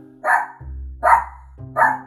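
Luna the dog barks three times in an even rhythm, each bark short and loud, with a low steady rumble filling the gaps between them.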